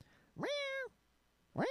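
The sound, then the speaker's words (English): A cat meows twice, loudly: a long, drawn-out rising yowl, a short pause, then a second meow that starts and gets cut off. No one speaks. “I just realized that he keeps going to the point where Brian hits the fucking cat twice.”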